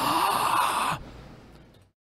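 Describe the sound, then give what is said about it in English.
A single harsh, breathy cough lasting about a second, fairly loud and alone with no talking, then trailing off into quiet breath noise. “Oh, fuck, I coughed.”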